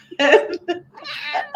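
Several short, nasal meow-like cries in quick succession, fairly loud, with warbling harmonic tones rising and falling like a cat's vocal complaints.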